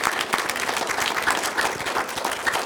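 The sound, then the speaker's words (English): A church audience breaks into steady applause after affirming new deacons, many hands clapping in a dense, even patter that holds at a constant level throughout, with no voices standing out. “Round of applause.”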